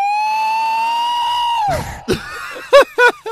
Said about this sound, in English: Yeah, I'm looking up Sasquatch calls at night now. Ooh. That was a pretty big one. Oh, Canadian Rockies, they said.